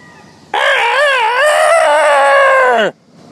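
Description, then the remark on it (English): A single loud rooster crow, heard from a street beside a hotel, a long wavering call of over two seconds that rises, holds and drops off at the end, with no one talking. “I've been walking down the street talking to you, and now I'm walking right into my hotel, and I can still hear them. So there you go. That's my rooster story.”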